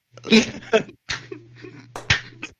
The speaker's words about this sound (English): Slow hand clap.